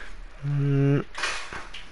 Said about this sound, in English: I wonder if I can shoot the chain off the door. Let's see. Let's see if I can shoot the chain off the door.